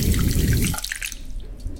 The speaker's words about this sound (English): Smell the shampoos and feel the warm water on your scalp, cleansing it.